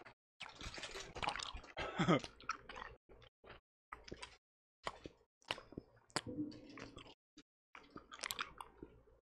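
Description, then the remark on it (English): Wet chewing of a sticky, chewy sour candy, with irregular squishy, smacking bursts separated by brief silences, with no one talking. “It's like sucking all the moisture out of my mouth.”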